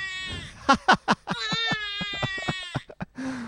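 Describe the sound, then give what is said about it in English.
A baby cries in a wavering, high-pitched wail broken by sharp, choppy bursts, then starts a fresh, strained cry at the very end. “And this is a sound that you'll soon be hearing quite a bit of.”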